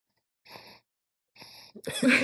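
A dog breathes loudly: two raspy, airy breaths with short pauses between them, followed by a louder burst of snorting, huffing exhalation at the end.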